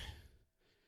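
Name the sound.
heavy breathing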